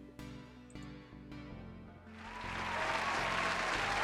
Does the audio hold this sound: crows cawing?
no